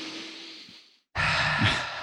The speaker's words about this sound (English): We're going to have some breathing exercises here for a moment.